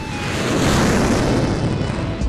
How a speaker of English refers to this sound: In fact, just being around jets looks cool. Imagine being near jets, taking off and landing every 25 seconds.